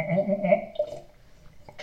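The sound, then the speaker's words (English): A sip of Dr. Pepper is taken and swallowed, with a short gurgling, throaty slurp followed by quieter mouth sounds and a faint click at the end. No one speaks. “Let's just get another sip of Dr. Pepper here.”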